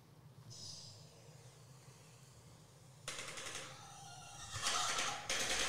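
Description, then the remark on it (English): A bird gives bursts of harsh, rapid clattering calls that sound like machine-gun fire, starting after a quieter stretch with a faint high whistle and growing louder toward the end. “No, that's the bird making the noise.”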